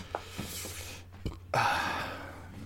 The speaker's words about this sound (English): Sorry about that burp. I'm not.